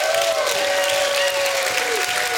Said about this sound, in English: If you got faith in God, stand to your feet and give God a hand clap and a shout of praise.